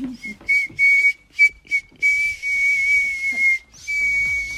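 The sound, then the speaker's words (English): A girl whistles Jingle Bells through her teeth, a thin, high, breathy tone full of airy hiss. A quick run of short toots gives way to longer held notes, with no talking. “I can whistle through my teeth.”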